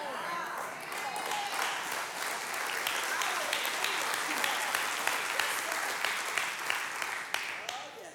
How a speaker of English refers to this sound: We can clap in here.